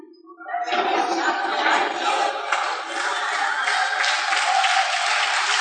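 An audience bursts into loud, steady applause after a brief quiet start, with dense clapping and some crowd cheering sustained throughout.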